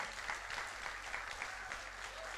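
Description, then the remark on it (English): An audience claps steadily, a dense wash of many hands beating together at an even, sustained loudness throughout, with no single claps standing out. “You better clap your hands.”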